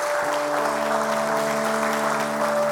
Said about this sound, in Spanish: Y la iglesia dice, si usted ha recibido la enseñanza, dar un aplauso al Señor. Dile gracias, Señor.